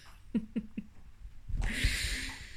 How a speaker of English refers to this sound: Oh, here come the snores.